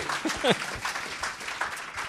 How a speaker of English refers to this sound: All right, round of applause for